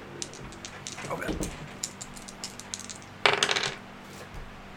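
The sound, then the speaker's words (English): Dice, a d8 and a d6, clatter across a hard tabletop: a scatter of quick light clicks and taps, then a louder rattling tumble that settles quickly, with faint voices murmuring underneath. “And that'll be a d8 plus a d6.”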